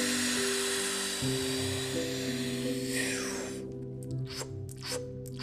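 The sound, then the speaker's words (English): A steady rushing hiss gives way to a quick series of short, sharp gulping breaths, about four rapid sips of air, over a low sustained musical drone: the freediving breathing technique called packing, as learned by world champion freediver Tanya Streeter. “To become a world champion in freediving, Tanya Streeter learned to breathe like this.”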